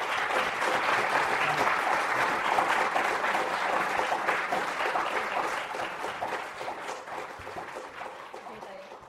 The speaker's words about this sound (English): Okay. If you could join me in giving our guests one more round of applause.